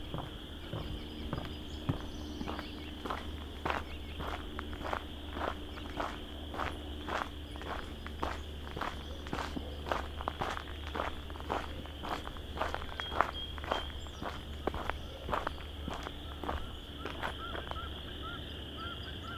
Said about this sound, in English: Couple mallards wading through the water here.